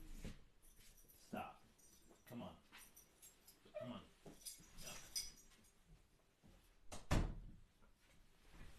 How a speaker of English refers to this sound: All right, we have hurt feelings now. The dogs are, you know, they're in the other room quiet, and then all of a sudden they've got to start playing. So anyway, everyone is fine. Just hurt his feelings.